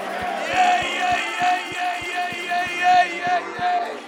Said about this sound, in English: Clap your hands, all ye people. Shout unto God with a voice of triumph.